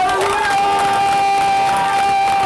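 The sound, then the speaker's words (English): A large standing crowd claps and cheers loudly and continuously in praise to God, a dense wash of applause and shouts with a sustained musical tone running underneath. “Now I want everybody in this room right now to give God the best praise clap you got.”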